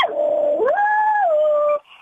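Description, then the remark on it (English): A dog named Alibaba joins in with singing, howling in one long, sustained tone. Its pitch climbs, holds, then slides back down before it stops abruptly. No other voices are heard. “Oh, my dog's joining in.”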